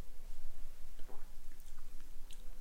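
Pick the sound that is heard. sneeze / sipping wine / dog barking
sipping wine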